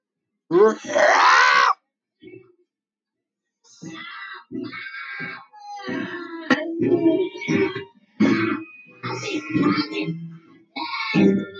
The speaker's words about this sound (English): And now he's going to scream.